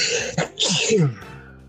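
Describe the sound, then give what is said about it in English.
A single loud sneeze: a breathy intake, then a sharp burst of air that trails off into a voiced, falling tail, with no talking around it. “Bless you.”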